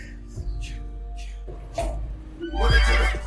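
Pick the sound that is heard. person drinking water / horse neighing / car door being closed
horse neighing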